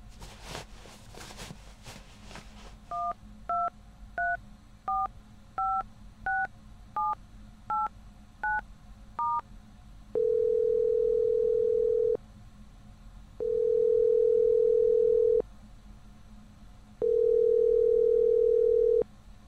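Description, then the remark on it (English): A brief rustle, then about ten quick touch-tone keypad beeps dial a phone number found written on a paper, followed by three long, steady ringing tones with short pauses between them, clear with no one talking. “It's a phone number. Should I call it?”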